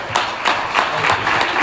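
A crowd claps steadily for Brother Seth as he comes up, many hands together forming a dense, continuous applause with a faintly pulsing rhythm, fairly loud, with no voices standing out.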